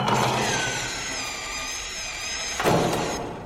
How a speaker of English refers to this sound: Please, I said stop drilling.